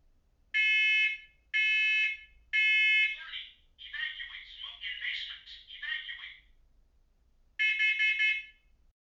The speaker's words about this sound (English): So we just heard, what is this, glass breaking, smoke alarm, dog barking, baby crying.